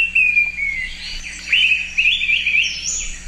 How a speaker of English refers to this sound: It's the Araripe manakin, one of the world's rarest and most spectacular birds.